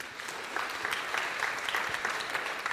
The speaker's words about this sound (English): Gosh, I would like for you, if you guys would do me a huge favor and just give them a mild round of applause.